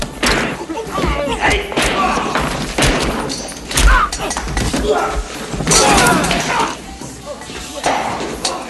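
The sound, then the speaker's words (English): Heavy, muffled blows land repeatedly, a pool ball wrapped in a towel striking a body, amid a chaotic din with raised voices and scuffling. “Pool ball in towel being wrapped up.”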